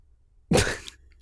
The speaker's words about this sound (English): I'm going to take another sip of this Minute Maid lemonade.